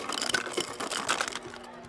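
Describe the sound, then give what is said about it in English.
Ice clatters and crunches out of a smart fridge's dispenser in a quick burst of cracking, grinding bits, fairly loud, for under two seconds with no voices. “Smart Fridge is freaking the fuck out. Deploy ice.”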